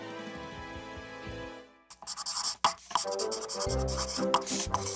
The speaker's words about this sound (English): And yet you continue to write all over my stage. It's just unacceptable. I can't really move without writing on your stage.